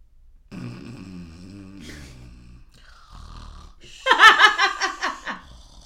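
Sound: voice imitating snoring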